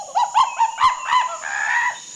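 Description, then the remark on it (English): A run of repeated bird calls in the Amazon rainforest among big trees and hanging vines, each a short rising-and-falling chirp, ending in a longer drawn-out call, over a steady high-pitched hum; the weather is hot and sticky. “I can hear birds all around me, and I think there's a monkey up there, too.”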